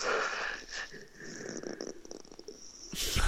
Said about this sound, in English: Sorry, did I make a noise? Yes, what? Yes, you were. I was yawning.